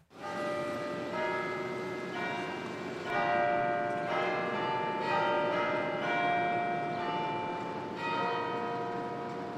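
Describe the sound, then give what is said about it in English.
The bells of St. Patrick's Cathedral in New York peal continuously on a Sunday morning, overlapping strikes every second or so with long ringing tones that blend into a rich, resonant wash, heard alone without any voices. “Every Sunday morning in New York, the bells of St. Patrick's echo through the city, beckoning Catholics and non-Catholics to the cathedral's massive bronze doors.”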